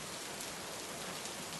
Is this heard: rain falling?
yes